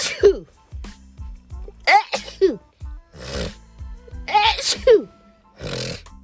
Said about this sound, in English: Sorry, y'all. I try to keep myself from sneezing. Oh, shoot.